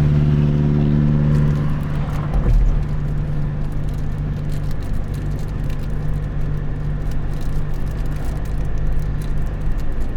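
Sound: car driving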